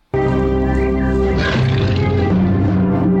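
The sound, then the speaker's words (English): A deep, booming roar of a 10-ton T-Rex in a movie bursts in abruptly and holds loud for about three seconds, rough and growling with a rich low rumble and shifting, strained tones. “The roar, yeah.”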